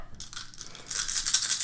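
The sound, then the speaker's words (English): Seven dice shaken in a lap rattle and clack together, starting with a few separate clicky shakes before building into a louder, continuous bright clatter. No one speaks. “seven dice in my lap because my hands aren't big enough.”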